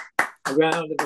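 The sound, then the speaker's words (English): A brief, cheap-sounding round of applause sound effect on the Null and Void show: a sharp clap-like burst, then a voice mimicking clapping and cheering with a buzzy, tonal sound for about half a second. “A round of applause. Yeah. No expense spared on that sound effect.”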